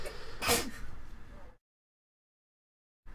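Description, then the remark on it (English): A single loud sneeze, a sharp explosive burst after a brief intake, trailing off into complete silence. It sounds like a voice acting out the sneeze. “Bless you.”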